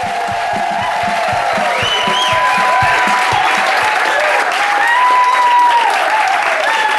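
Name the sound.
audience applause and cheering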